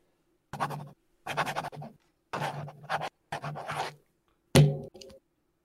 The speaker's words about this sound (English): I'm going to put the mic down to this piece of paper. I'm gonna sign this contract. You're going to sign it? Yeah, let me see here. Here we go.